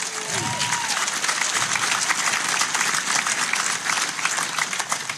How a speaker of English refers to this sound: You can clap for that, man.